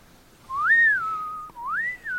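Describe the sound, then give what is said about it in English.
A person whistles two swooping phrases, each rising then gliding down into a held tone, imitating the sound of a whistling-birds weapon. Clear, with no talking. “Whistling birdies.”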